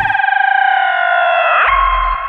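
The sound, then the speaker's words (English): A steady, high whistling howl of wind outside a sliding door at the ocean, with several layered tones, holding loud and even throughout, joined by a deep rumbling buffet in the last half second. No one speaks. “Kind of trying to give you a peek out this this sliding door, but the wind is a howling.”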